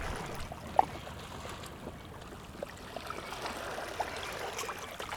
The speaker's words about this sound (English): how to collect sounds of the water